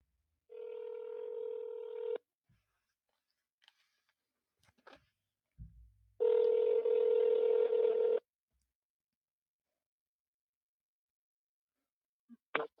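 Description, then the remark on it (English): A phone call being placed on a cell phone: two steady electronic ringback tones, each about two seconds long, separated by a quiet gap with a few faint clicks and taps. No one speaks. “So let me get my handy-dandy cell phone and place a phone call.”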